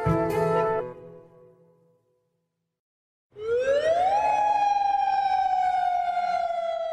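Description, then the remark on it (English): After a moment of silence, a curfew air-raid siren in Jordan, sounded every day at 7 p.m. during lockdown and lasting about 5 minutes, winds up from a low groan into a loud, sustained wail that slowly sags in pitch, steady and unbroken with no voices. “Every day at 7 p.m., we hear the sound of the sirens. This is the same alarm that would be used in case of war.”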